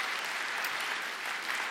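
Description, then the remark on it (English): Steady applause from a large audience at a morning church service, dense, even clapping filling the whole moment at moderate volume, with no voices standing out. “Can we give them one more round of applause for their being with us this morning?”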